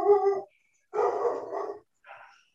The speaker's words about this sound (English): I'll say that I thought maybe the dog was just disagreeing with you.